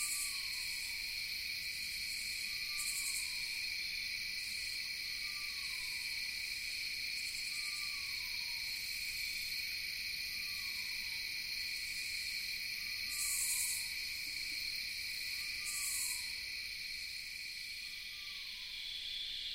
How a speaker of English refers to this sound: Listen, barely audible, the whinnies of a distant eastern screech owl. So exquisite. so sublime.